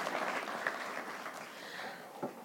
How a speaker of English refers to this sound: Thank you for sharing. Why don't you guys give her a round of applause? Yeah, thank you.